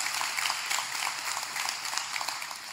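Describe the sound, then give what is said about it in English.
A church audience at Union Chapel claps steadily, many hands overlapping into a dense, even patter of applause at moderate volume, with no one speaking over it. “Oh, you want to clap for Mary? She's great.”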